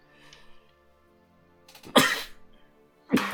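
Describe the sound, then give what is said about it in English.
A loud sneeze bursts out after a quiet stretch, followed about a second later by a second sharp, breathy sneeze at the end. “Bless you.”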